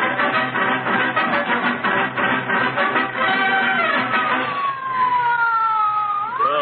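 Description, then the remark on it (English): A wailing ambulance siren sounds loud, its tone gliding down slowly and sweeping back up over a steady rumble of engine noise. No one speaks. “Call an ambulance. This is serious.”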